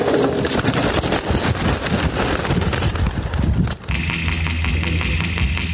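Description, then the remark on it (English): A dense, rushing flutter of many wings as a flock of 114 racing pigeons, driven from Maine to Vermont, is released all at once from the back of a trailer at the start of a race, taking off together for several seconds, then it gives way abruptly to a steady low engine hum. “He drove 114 pigeons from Maine to Vermont and released them all at once from the back of his trailer.”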